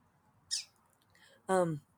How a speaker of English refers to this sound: Sorry, distracted by the birds.